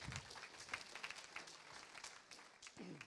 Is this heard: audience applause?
yes